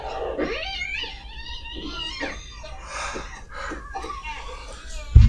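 A cat wails in long, drawn-out, wavering yowls that rise and fall across several seconds, loud, with a steady low hum underneath and a brief thump at the end.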